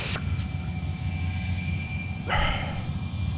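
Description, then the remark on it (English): A deep, steady roar of airplanes passing low overhead fills the air, a heavy rumble that never lets up, with a brief rushing hiss swelling near the end. “They're passing a joint back and forth as planes fly low overhead.”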